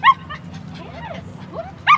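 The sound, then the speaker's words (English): An excited Chihuahua terrier mix named Charlie, dressed as Superman at a fall festival on a farm in Maryland, lets out two sharp, high-pitched yips, one at the start and one at the end, with softer whiny sounds between, over a low background murmur. “With pumpkins, apple cider, and a dog too excited to sit still for a photo.”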